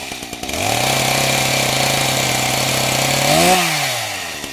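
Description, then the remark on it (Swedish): A chainsaw sputters and catches, then holds a loud, steady idle before revving up sharply near the end and winding back down. “Det blir hjulet av en motorsåg som brummar igång veckan för att summera omdömet av Manchester Uniteds insats i derbyt mot Manchester City, som de förlorade med 1-4.”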